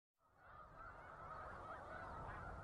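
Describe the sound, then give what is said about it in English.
A large flock of migrating snow geese honking continuously near Savannah, New York, in the Finger Lakes, a dense overlapping clamor of many calls that swells in after a brief silence and stays loud and steady throughout. “We leave you this morning near Savannah, New York, in the Finger Lakes, a favorite spot for migrating snow geese.”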